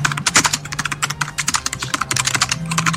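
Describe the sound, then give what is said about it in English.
Rapid, continuous typewriter-style key clacking as a sound effect, many sharp taps in an uneven fast rhythm, fairly loud over a faint low hum, with no voices. “I like the typewriter sound effect.”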